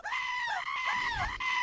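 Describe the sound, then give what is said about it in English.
A fainting goat screams loudly in one sustained, wavering, almost human-sounding cry that lasts under two seconds, with no talking over it. “I've got to pull up the goat screen because he was a fainting goat”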